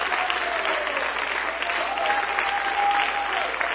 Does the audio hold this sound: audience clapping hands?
yes